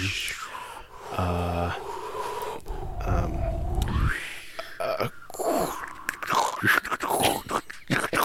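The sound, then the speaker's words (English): A voice imitates a crackling fireplace fire, mixing hissing breaths, throaty grunts and gurgling pops in an uneven, continuous stream for several seconds. “That's a fireplace.”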